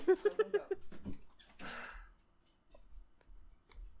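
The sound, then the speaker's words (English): Dogs in the room let out a quick run of five short, whiny yelps, followed by a loud breathy huff or sigh, then faint shuffling noises. “Sorry, the dogs are in here.”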